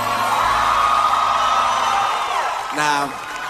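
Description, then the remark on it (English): A live concert crowd cheers in a dense, steady roar for a couple of seconds, then settles as one loud, high whoop rises and falls above the remaining noise. “Now, I had the choice to do any song off the album, and I said, I figured I have a pretty intelligent crowd, so I'd rather not do nothing too hype, nothing too crazy.”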